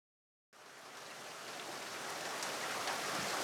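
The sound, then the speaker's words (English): After a half-second of silence, a steady hiss of rain starts abruptly and continues evenly, growing slightly louder rather than tapering off. No voices are heard. “the deluge of rain slowed to a light drizzle as Detective H2O pulled to a stop in his rusty blue Ford”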